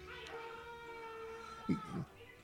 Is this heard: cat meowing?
yes